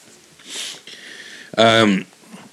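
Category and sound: food or drink, sipping a hot drink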